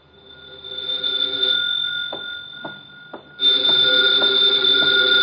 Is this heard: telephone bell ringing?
yes